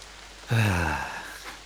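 Rain hisses steadily throughout. Partway in, a low, droning tonal sound swells loudly over it, then slowly fades while the rain continues.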